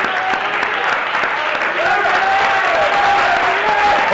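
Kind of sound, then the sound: crowd, audience clapping hands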